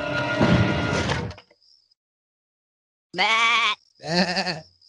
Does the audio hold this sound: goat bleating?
yes